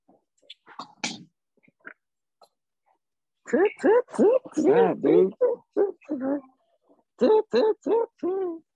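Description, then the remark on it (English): A dog barks in quick, high-pitched bursts, a rapid run of yappy barks, a short pause, then four more. Faint scattered sounds come before the barking starts. “Damn dog.”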